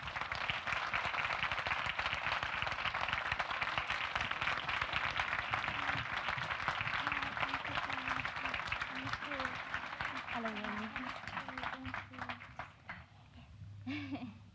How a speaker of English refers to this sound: And as she comes to the stage, could you please put a round of applause together for Yeonmi Park?